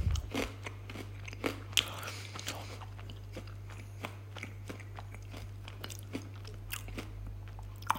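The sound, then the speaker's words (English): Crisp crunching of someone chewing a crunchy chocolate bar, with sharp irregular bites and crackles spread across several seconds over a steady low hum. “Well, I'm here eating my crunchy, man. What's the best chocolate?”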